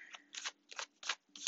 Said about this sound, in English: I cannot guarantee you will hear me shuffling the whole duration of this reading, but based off of faith, we will go from here.